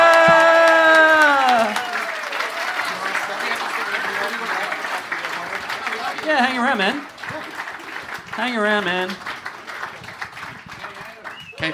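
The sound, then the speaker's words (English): A live audience applauds steadily for the whole stretch as comedian Adam Spencer is welcomed on stage, a dense, even wash of clapping with scattered cheers, while voices speak and a man talks briefly over it. “Keep clapping.”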